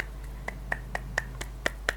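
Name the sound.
person clapping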